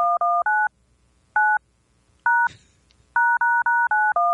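Telephone keypad tones, pressed to play Ba Ba Black Sheep, beep out a simple tune: a quick run of short two-tone notes, a few isolated beeps with pauses between, then a steady run of six even beeps to finish.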